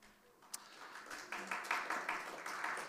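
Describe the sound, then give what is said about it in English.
An audience breaks into applause that swells after a quiet start, a dense wash of many hands clapping with no voices over it. “She deserves the applause more than me, but thank you.”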